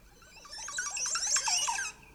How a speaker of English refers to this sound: So this bird, the Amoxicillus rendezvous, Montezuma or Orpindola, Montezuma Orpindola. Here it is. So cool.